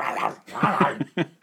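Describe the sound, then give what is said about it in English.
A person's voice imitates an alligator with a rough, growly bark-like sound, a longer guttural stretch followed by two short, clipped barks, fairly loud. “I don't think that's the sound a gator makes.”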